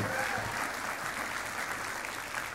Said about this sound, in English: Give them a clap offering one more time.